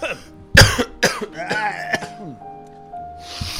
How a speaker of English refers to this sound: Podcasts are just us coughing all the time. Just 10-hour loop, the boys coughing. Two large adult babies coughing.